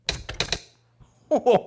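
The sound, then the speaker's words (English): A gecko skitters across keyboard keys: a quick run of four or five sharp, clacking key strikes, fairly loud, followed by a pause and then a brief burst of voice. “He's skeetering across the keys. He's typing a message out.”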